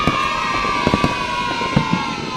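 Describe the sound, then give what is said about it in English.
Several sharp fireworks bangs pop over a dense, continuous roar of a cheering crowd, with a thin whistling tone gliding slightly downward through the noise, at the Milford Haven Roundtable Free Fireworks Event on Tuesday 5 November. “The Milford Haven Roundtable Free Fireworks Event, Tuesday the 5th of November.”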